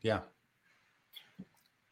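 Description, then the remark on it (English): A brief voiced sound opens, followed by a quiet pause, then a faint slurping sip and a soft low gulp as someone swallows a mouthful of water. “I'm just going to drink a sip of water.”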